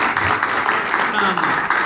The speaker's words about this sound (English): Big round of applause starting out. Big round of applause, okay? Okay.